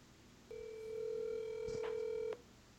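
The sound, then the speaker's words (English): A single steady electronic telephone keypad tone sounds clearly for nearly two seconds, with a couple of faint clicks partway through, then it stops abruptly, leaving quiet background. “Hey, can you, well, let me just ask you on the phone.”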